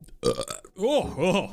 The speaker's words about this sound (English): I do burp a little.